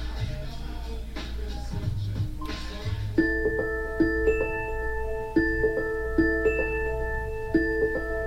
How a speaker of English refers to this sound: Listen how pretty. I've never heard this before. Siri, stop. So she stopped the alarm.